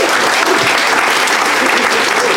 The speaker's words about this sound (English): Round of applause for everybody in the audience who gave us their problems. Yes, thank you.